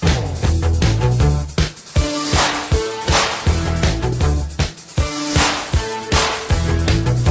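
An upbeat 1980 new wave track with driving bass and synths, punctuated by sharp whip cracks that snap out at regular intervals over the steady beat, loud with no voices.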